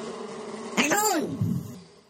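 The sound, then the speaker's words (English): A voice imitates a swarm of bees, a buzzy hum that swoops up in pitch and back down over about a second, then trails off quietly. “All right, and he just stormed out of here, or he slash millions of bees stormed out of here.”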